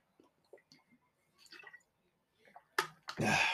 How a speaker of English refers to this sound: Water break.